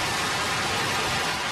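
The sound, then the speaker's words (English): A golf crowd roars loudly for Jack Nicklaus at Augusta at the 1986 Masters, a dense, steady wash of cheering with no single voice standing out, holding at full strength for the whole brief moment. “By the way, the crowd was that loud.”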